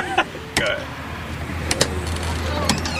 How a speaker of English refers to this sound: Knock on the door. I like that. Oh, see, we're knocking on the door.